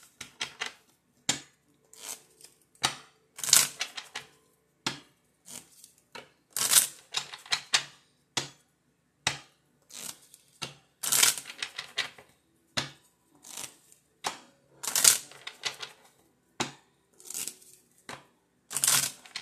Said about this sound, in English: It's the shuffle for me. Seven of Diamonds just popped out.